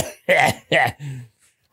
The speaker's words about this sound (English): grandma had that cough because she was a smoker.